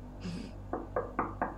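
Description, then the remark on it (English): Four gentle knocks on the wooden door of a father's study, evenly spaced and moderately soft, preceded by a brief faint rustle; no voices. “Do you knock? Yeah. Very politely.”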